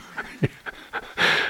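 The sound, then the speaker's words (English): A person imitates a dog's panting, with four quick, breathy huffs in a steady rhythm followed by one longer, louder exhale, heard on its own. “It's kind of like its tongue's hanging out, its eyeballs are glaring, its feelers are out, kind of panting.”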